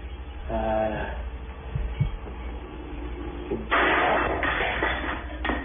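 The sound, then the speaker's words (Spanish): Kitchen commotion: a couple of dull thuds and knocks, then a sudden loud burst of clattering and banging as plates and glasses fly and drawers open by themselves, with a brief voice early on, all recorded with muffled, hissy sound. “Empiezan los platos, los vasos a volar en la cocina. Los cajones se abren solos.”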